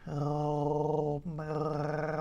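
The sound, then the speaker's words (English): A voice makes a low, steady gargling uvular trill, a rattly growl-like hum held for about a second, broken by a brief pause, then resumed with the same pitch. “Now make a gargling sound, which is a uvular trill.”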